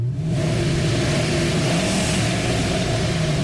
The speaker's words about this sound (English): I'm in the car. have you started it yet? I've started it.